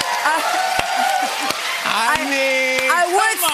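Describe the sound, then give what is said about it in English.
A slow clap: five single, sharp hand claps spaced evenly about two-thirds of a second apart, over a steady bed of overlapping voices and laughter. “Is that the slow clap beginning?”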